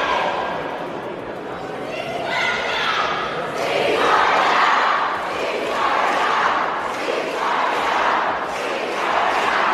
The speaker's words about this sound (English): Ceasefire now is what they are chanting. And once again, they are Jewish protesters.